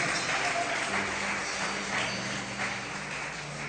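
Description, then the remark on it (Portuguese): A church audience applauds the Lord during an altar call, a dense, steady wash of many hands clapping that stays at an even loudness throughout, with a faint low sustained tone humming beneath it. “Vamos aplaudir o Senhor, igreja.”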